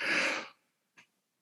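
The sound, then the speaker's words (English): A big yawn: a long, breathy exhale lasting about half a second, then a brief soft breath sound a moment later, with no talking. “Apologize for my big yawn there.”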